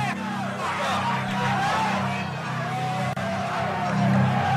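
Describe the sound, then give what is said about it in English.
A large arena crowd roars and cheers continuously as heavyweight boxing champion Mike Tyson makes his entrance to the ring, a dense wall of many voices with scattered shouts rising above it, over a steady low drone throughout. “behind that crowd there coming in”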